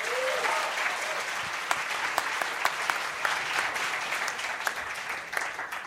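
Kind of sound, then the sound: crowd, audience applause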